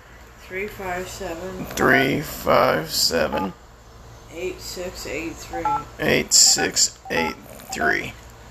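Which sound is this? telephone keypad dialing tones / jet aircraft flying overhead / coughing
telephone keypad dialing tones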